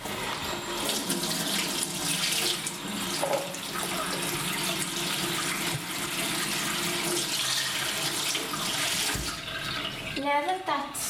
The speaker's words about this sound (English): So what's the first thing you need to do? First thing you need to do is wash your hands. Okay, let's do it.